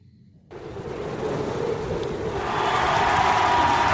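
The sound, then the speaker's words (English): A dense crowd roar surges in abruptly and swells louder partway through, a steady wash of cheering and clapping from a large audience as people march out, with mounted police clapping, no distinct voices standing out. “Okay, and people are liking sort of marching out there. The horse cops are clapping.”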